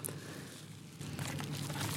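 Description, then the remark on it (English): A slip of paper is taken out, unfolded and crinkled, a soft rustling that grows busier and more crackly after the first second, with no voices over it. “Right, so I'll take out one piece of paper.”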